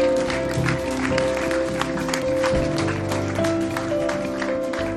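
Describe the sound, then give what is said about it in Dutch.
Steady audience applause for Pastor Nick fills the whole stretch, a dense crackle of many clapping hands over sustained musical tones, fairly loud and even throughout. “Ja, laten we Pastor Nick een geweldig applaus geven.”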